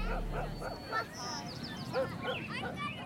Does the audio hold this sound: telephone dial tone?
no